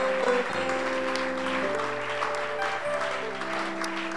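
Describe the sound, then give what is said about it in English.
An audience at a church gathering claps for themselves steadily and continuously for a few seconds, a dense wash of applause, while sustained keyboard chords hold and shift underneath. “And one last thing, clap for yourselves for enduring up to this stage.”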